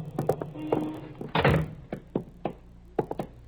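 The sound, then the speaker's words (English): The door of a settlement house building thuds heavily partway through as people go in, amid a scatter of sharper knocks and clunks of handling, with no voices. “Here, we go in this door.”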